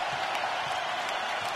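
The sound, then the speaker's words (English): A large basketball arena crowd roars steadily in the third quarter of a game, trying to rally the Raptors. It is a dense wash of cheering and noise without pause, with no clear voices standing out. “Crowd trying to rally the Raptors out here as Lowry gets it to Leonard.”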